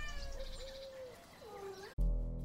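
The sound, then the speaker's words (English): Cats running out of a cabin to greet people arriving meow twice in a row, a longer drawn-out call followed by a shorter rising one, before the sound cuts abruptly into a loud, low, booming tone. “Dutch watches Agnes and Amy as they approach their cabin, the cats running out to greet them.”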